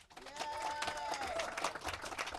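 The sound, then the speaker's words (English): An audience breaks into a steady round of applause for the nominees of the Girls on Film Awards, dense overlapping claps at an even loudness throughout, with a high voice whooping or cheering over the top in the first half. “And I'd love a round of applause for all of those people who are nominated today.”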